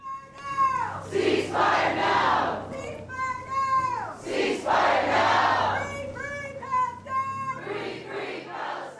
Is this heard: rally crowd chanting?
yes